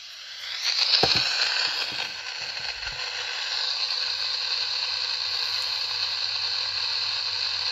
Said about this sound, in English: So right now, it is on AM frequency 530. I'm located in Filer, Idaho, to give you a rough idea of the geography. Right now, all we're getting is pure static. With some breaks, like something was trying to come through.